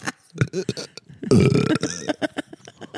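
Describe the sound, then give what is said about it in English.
A long, loud, rumbling burp swells up in the middle, surrounded by several shorter throaty vocal bursts before and after it. “Why is the cum giving you so much bad indigestion?”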